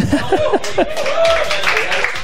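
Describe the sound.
A light, brief patter of applause from a small crowd welcoming a guest, with scattered chuckles and murmuring voices mixed in, steady for a couple of seconds.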